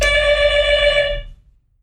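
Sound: doorbell ringing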